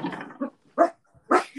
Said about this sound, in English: sorry, my dog's barking